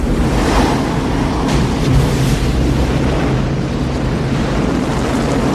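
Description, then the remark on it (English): Heavy storm surf from a 50-year storm roars continuously, big waves crashing and churning in a dense, loud wall of noise with wind gusting over the top, no voices present. “But I knew you wouldn't miss a 50-year storm, Bodhi.”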